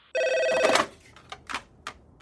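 A single short burst of a telephone ringing, bright, cutting off after under a second and followed by a few soft clicks and handling noises.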